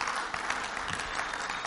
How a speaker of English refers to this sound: Amen? Go ahead, you can clap.